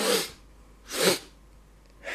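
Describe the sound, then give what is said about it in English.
A person does a calming breathing exercise through a blocked nose: three sharp, rhythmic nasal breaths about a second apart, fairly loud, with a snuffly, congested quality and quiet pauses between them. No one speaks. “So the breathing, parasympathetic side, quickest way to calm down, can do it any time of day, going to bed, out and about, is...”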